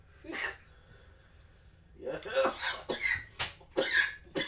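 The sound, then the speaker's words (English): A man has a coughing fit after smoking a strong rolled cigarette: a single harsh cough, then after a short pause a rapid string of hacking, raspy coughs with strained gasps between them, fairly loud. “Me have you cough, I'm gonna die.”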